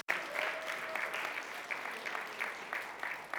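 An audience applauds steadily, many hands clapping in a dense, even patter that holds at a moderate level throughout, with no voices standing out.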